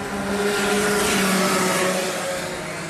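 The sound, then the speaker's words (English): Racing car engines roar loudly and continuously on a track, a dense, steady drone with a sustained whining pitch running through it. No voices are heard. “She's obviously got a problem with her engine or something.”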